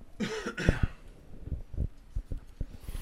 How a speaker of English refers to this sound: You okay? Yeah, I'm good. I feel really good. Nice. Coughing a little phlegm. No big deal. Yeah. Everyone does it.